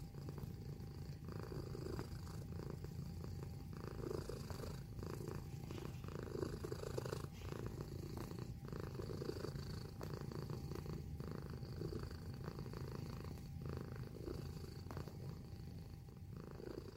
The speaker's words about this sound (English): Sorry, guys. Looks like my cat, Spock, has decided to interrupt the show. Again? Yeah, but he loves it when you pet him. Check it out.